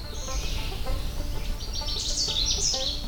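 A hermit thrush sings clear, flutey phrases that rise and shimmer in Allegheny National Forest, ringing out over steady low outdoor rumble, with several overlapping notes near the end.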